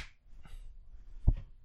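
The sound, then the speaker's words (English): A single sharp hand clap, made in front for syncing, rings out near the end, fairly loud, after a stretch of quiet room noise with faint rustling. “can you clap in front?”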